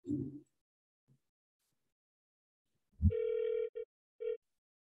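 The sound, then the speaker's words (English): An electronic phone ring sounds clearly: one sustained tone followed by two short beeps, fairly loud, after a brief low thump near the start and a short pause. “Oh, I hear a phone.”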